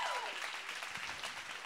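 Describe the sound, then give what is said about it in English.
A large crowd at Influence Church claps and cheers during a five-second praise break, a dense, steady wash of applause, with a brief rising whistle-like tone at the start. “go ahead and take a five-second praise break”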